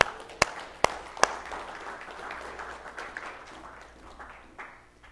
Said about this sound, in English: God bless these surrogate mothers. Amen? And we can clap for that.